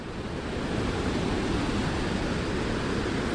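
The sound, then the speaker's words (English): A steady, powerful roar of rushing water from Muskrat Falls, a large waterfall crossing the breadth of the Churchill River in Labrador, northeastern Canada; a dense continuous wash of noise heavy in the low end, loud and unbroken throughout with no voices. “It ends on gigantic rocks that jut out over the impressive falls that cross the breadth of the Churchill River.”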